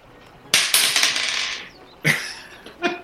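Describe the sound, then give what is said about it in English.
A die clatters and rattles across a hard surface, tumbling for about a second before settling, followed by two shorter sharp rolls with bright clicking bounces. The die is rolled for an attack during a game. No one speaks. “So roll your attack”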